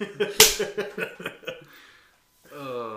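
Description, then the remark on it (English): A single sharp, loud slap on skin cracks out early, surrounded by bursts of laughter, before a short pause and then a voice comes back in. “Your dad comes on as the main event and just slaps us both and goes, fucking grow up and do something with your life.”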